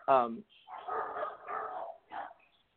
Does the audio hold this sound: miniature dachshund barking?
yes